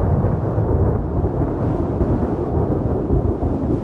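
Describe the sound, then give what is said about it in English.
A continuous, heavy rumble of thunder rolls on without a break, deep and loud throughout, with a faint wash of storm noise above it and no voices. “Thunderstorms, flashes of lightning accompany revelation, and thunder and downpours usually prefigure the appearance of a character or the beginning of a significant event.”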